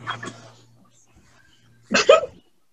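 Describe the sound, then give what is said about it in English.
A female dog gives a short whiny vocalization, then after a pause lets out a louder bark-like yelp with a whimpering edge, with a low steady hum underneath. “Your dog only cares when you're on the phone, I swear.”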